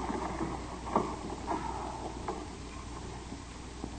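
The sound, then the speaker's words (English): Oars dip and splash as a boat is rowed on an artificial lake fed by dammed mountain streams, at an irregular, unhurried pace, each stroke a soft wet slosh over a steady wash of rippling water. No one speaks. “No, a rowing encyclopedia.”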